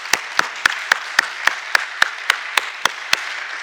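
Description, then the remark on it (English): An audience claps in a steady, rhythmic unison, about a dozen sharp, loud claps evenly spaced over a continuous wash of scattered applause, with no voices. “I don't know about you, but I get so geeked up, I think I might just need to clap right now.”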